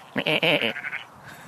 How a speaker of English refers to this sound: There's a whole flock of sheep. As a pastor, I should be right at home there. Oh, you can even hear them.